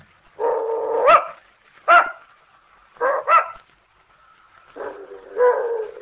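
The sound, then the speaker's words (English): An old female dog lets out a string of short, whiny barks and yelps in uneven bursts, some drawn out into whimpering growls, with brief pauses between them. “I don't believe your dog likes me”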